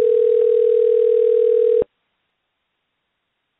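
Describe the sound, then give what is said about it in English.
A phone line rings on the caller's end while placing a call to the caller's mother: a steady electronic tone held for almost two seconds, then silence, then the tone starts again just before the end. No one speaks. “So first up, let's call my mama. She is the queen of Christmas. So let's give her a call.”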